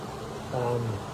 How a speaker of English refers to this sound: It's got this, you can probably hear it, this low hum of water kind of rolling through it.